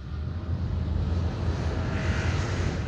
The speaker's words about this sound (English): What was that? It almost sounded like an airplane had landed in the pasture.